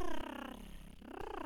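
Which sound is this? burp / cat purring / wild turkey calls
cat purring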